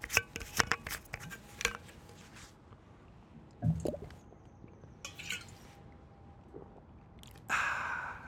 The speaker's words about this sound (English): So I'm going to open a water bottle, and I'm going to give you the chance to see if you can listen and enjoy the physical sensations, auditory sensations.